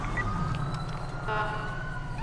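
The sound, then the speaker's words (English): An ambulance siren in a video game wails steadily and loudly over a low engine rumble as the ambulance drives the wrong way, its tone continuous for the whole couple of seconds with no voices. “Why is the ambulance driving the pool wrong way?”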